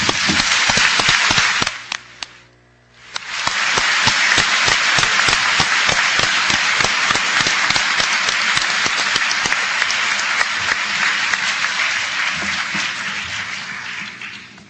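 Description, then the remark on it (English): A large audience applauds the degree candidates at a graduation ceremony in a loud, dense wash of clapping. A brief lull comes early, then the applause swells back and continues steadily, easing off slightly near the end. “Let's give the candidates a round of applause.”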